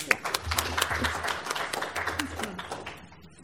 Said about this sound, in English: also another round of applause for everybody's comments.